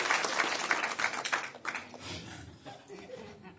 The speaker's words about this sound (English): Hey, let's have a round of applause for all the other comedians. Can we do that? It's been a fun show already.